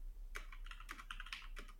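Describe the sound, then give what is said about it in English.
A short burst of typing on a computer keyboard, entering a question into an AI program: a handful of crisp, irregular key clicks, fairly soft, with no voices and a low steady hum underneath. “Because I knew I was going to be typing things in.”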